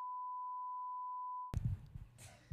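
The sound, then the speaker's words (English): A single steady, high-pitched censor bleep covering a name being said, held for about a second and a half, then cutting off abruptly as loud, overlapping voices break in. “If you want to say it, then we'll just bleep it out to make it super spicy.”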